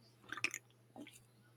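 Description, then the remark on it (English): A wet slurping sip of beer made with Icelandic water and a touch of oats, drunk at a microphone: a quick cluster of squishy sucking bursts, followed by a softer gulp a moment later, with no talking. “I want y'all to get me slurping that down.”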